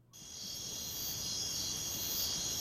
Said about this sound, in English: Crickets.